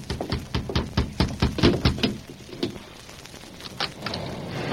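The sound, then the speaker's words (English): A steady thunderstorm downpour hisses throughout at night, while a quick run of heavy, evenly spaced knocks from someone pounding on a mission door sounds for the first couple of seconds before fading into the rain. “Concerned about a wayfarer being out in such a torrent, I hastened to the door and opened it.”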